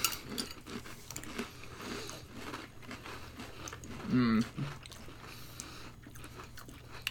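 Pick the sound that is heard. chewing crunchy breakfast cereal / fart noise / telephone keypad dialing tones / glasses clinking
chewing crunchy breakfast cereal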